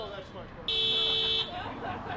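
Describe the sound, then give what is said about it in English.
A single steady car horn honk from outside, lasting under a second, loud and flat-pitched with a bright, buzzy edge, rising over faint background murmur and then cutting off. “Somebody needs to get their car taken care of.”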